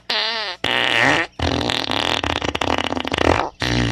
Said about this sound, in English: And click. Fart sounds.